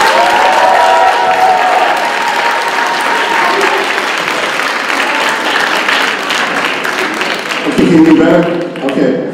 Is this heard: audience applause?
yes